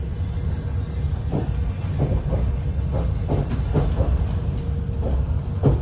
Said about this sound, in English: After a restful night on the train, as the morning sun shone, we rolled into Kyiv. Arriving in Kyiv.